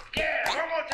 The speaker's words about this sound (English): Yes, so we have officially. Can get some applause.